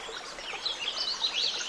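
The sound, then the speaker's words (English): A mountain stream flows with a steady, even hiss of rushing water, while high, quick bird chirps flit over the top. No one speaks. “But this forest of noise also made my arrival to the banks of this mountain stream that much sweeter.”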